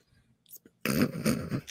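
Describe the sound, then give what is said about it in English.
A child's squeaky toy gets run over by a dog in a house, letting out one loud, raspy honking squeal that wavers for almost a second after a few quiet bumps. “That was one of little guy's toys being run over by a dog.”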